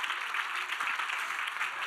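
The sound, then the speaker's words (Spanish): An audience applauds to the glory of Jesus Christ during a sermon, a dense, steady wash of many hands clapping that holds evenly throughout, with no voices standing out. “Un aplauso a la gloria de Jesucristo.”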